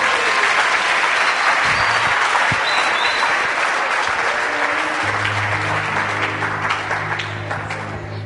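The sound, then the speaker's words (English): A large audience claps for themselves, steady and dense applause, with a low sustained tone rising underneath midway as the clapping begins to taper off near the end. “Clap for yourself. Palmas para ti.”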